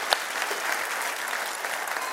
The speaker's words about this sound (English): Let's give such a gracious round of applause for all of our men and women at God Behind Bars.